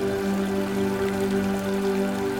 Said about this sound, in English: Y'all stand in the room after felling your foes. Sound of gently trickling water into the pools.